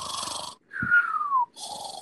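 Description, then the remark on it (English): A voice imitates a sleeping tramp's snore: a rough, raspy inhale, then a falling whistled exhale, then another raspy snore begins. Fairly loud, with no talking. “The tramp, fast asleep, snored.”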